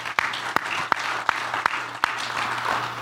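Applause from an audience after a speaker notes that the Colorado legislature passed 462 of 600 bills in its session: a steady wash of clapping with about six sharp, evenly spaced claps standing out over roughly three seconds, with a low steady hum underneath and no one speaking.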